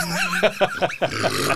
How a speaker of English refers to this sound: This is just going to be, laughs and burps. This is so stupid. Dueling burps.